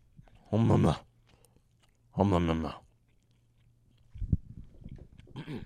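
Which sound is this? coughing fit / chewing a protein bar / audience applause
chewing a protein bar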